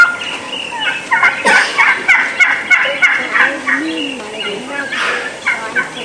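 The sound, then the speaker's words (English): Wild turkey hens giving an assembly yelp to gather the flock: a steady, rhythmic series of sharp, loud calls repeated over and over, with several birds overlapping outdoors and no talking. “So if you listen to the hens yelping, that's an assembly yelp.”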